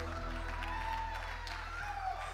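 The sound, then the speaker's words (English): A church audience gives the band a round of applause, a dense, steady wash of clapping that holds at an even level for the whole stretch, with a low constant hum underneath and no clear speech. “Give the band a round of applause.”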